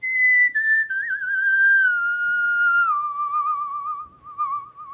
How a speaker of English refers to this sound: and just whistle all your blues away.